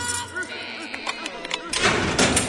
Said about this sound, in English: How's our patient in room 526? Sedated, sir. Excellent. Open his door, if you please. Yes, sir.